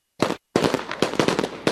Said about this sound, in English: Fireworks are going off.